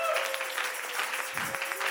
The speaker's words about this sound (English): Come on, everybody, clap your hands to the Lord.